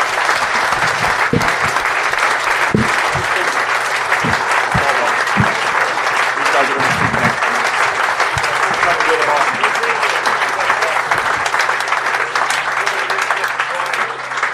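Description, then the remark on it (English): Steady, sustained applause from an audience, a dense wash of many hands clapping at an even loudness for the whole stretch, with a few sharper individual claps standing out, as the audience claps the first group of guests off the stage after part one. “So clap them off.”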